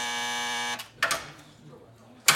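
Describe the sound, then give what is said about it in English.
A door entry buzzer at the Asper Grove police station gives one harsh, steady electric drone for under a second, then stops sharply, followed by a bright clack of the latch and a brief rattle. “I'll buzz you through.”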